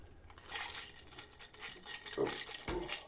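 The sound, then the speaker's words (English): Crown Royal being poured from a bottle, a steady splashing trickle with a couple of brief gurgling glugs toward the end, heard on its own without talking. “You can just pour that right there.”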